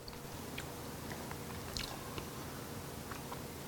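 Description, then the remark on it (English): Crunching as someone chews crispy bacon, with scattered sharp bites and crackles over a steady low background and no talking. “The crunch of the bacon.”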